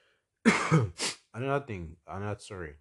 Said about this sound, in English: Cough just started again.